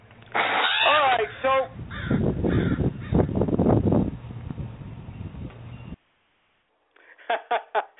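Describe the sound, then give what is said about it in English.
A crow caw sound effect, the Sting crow, plays on a wrestling radio show: a series of harsh caws, loud rasping calls at the start and a quick run of four sharp caws near the end after a brief silence. “About the Sting Crow for a second there.”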